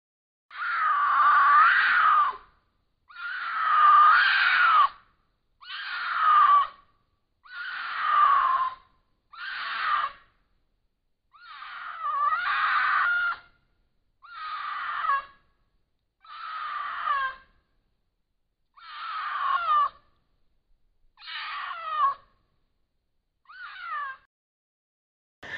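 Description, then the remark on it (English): A mountain lion's mating screams, recorded on a trail camera: about a dozen loud, drawn-out, wailing yowls repeat at a steady pace, each separated by a short silence, with no talking. “It's a mountain lion mating call, or, you know, but it sounds really crazy.”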